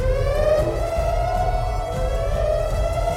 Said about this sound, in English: Above him, red emergency lights lining the ceiling began to flash red and blue. An alarm sounded.